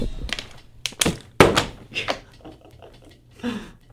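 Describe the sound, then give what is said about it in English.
A few hard, hollow thunks land at uneven intervals as a plastic water bottle is flipped and slaps down on a table, fairly loud, with scuffs and clatter in between. “I'm going back to flipping water bottles.”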